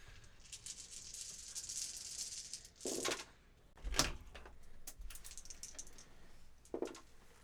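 A handful of 19 dice clatters and rattles across a hard surface, a quiet spread of small clicks with a few sharper knocks, heard alone without any talking.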